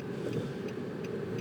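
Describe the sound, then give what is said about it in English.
A car engine hums and rumbles steadily as the car tries to cut across traffic, with road noise filling the background. No one speaks over the sound. “So, I'm trying to fucking jump across traffic here.”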